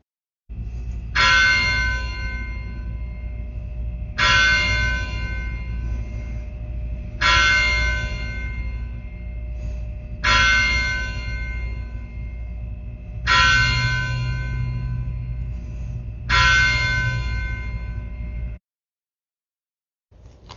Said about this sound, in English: The service began at 6 o'clock p.m., after the tolling of the church bell.